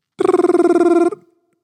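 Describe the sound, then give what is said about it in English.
A voice imitates a ringing phone with a single rapid, trilling burst of about a second, fairly loud, with no other sounds around it. “That was a fantastic ring, by the way.”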